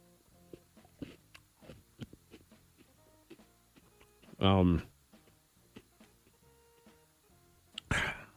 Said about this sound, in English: Wait, you choked? I never choked. Okay. I never coughed after Cinnamon Toast Crunch before.